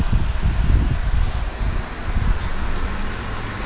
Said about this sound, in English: I've got a fan on because it's warm up here and it's causing me to get a little sleepy.